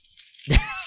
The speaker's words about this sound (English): Stop jingling your keys.